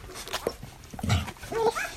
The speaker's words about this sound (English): This is the sound of 11 puppies. They're just 6 days old, and they're rushing, as much as puppies of that age can rush, to feed from their mum,